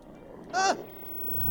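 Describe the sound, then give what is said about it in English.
A single brief, wavering wolf cry, a yelp or short howl, rises out of a quiet hiss and fades quickly as the wolves are getting closer; no one speaks. “It's wolves, and they're getting closer.”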